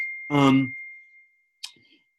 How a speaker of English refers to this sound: And that was the bell that means I should rewrite it, apparently. I'm sorry for that bell.